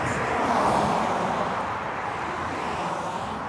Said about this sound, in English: there's a car passing that just passed by. Oh my God, there's so many cars.